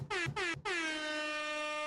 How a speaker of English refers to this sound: Where's the air horns? Yeah, no, there.